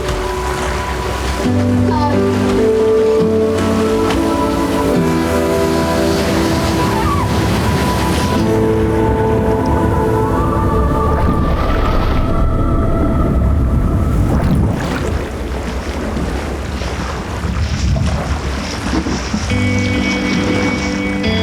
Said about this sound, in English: You know, and that's understandable because surfing can be a scary place in the ocean. See the wave starting to approach. Let's get ready. If you want to paddle through it, you can paddle through it.